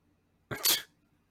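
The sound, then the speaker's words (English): A single quick sneeze, a brief voiced intake bursting into a sharp hissing release, set against an otherwise quiet background with no talking. “I'm sorry, I had a sneeze.”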